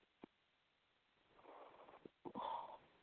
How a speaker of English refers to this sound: Pardon my yawn.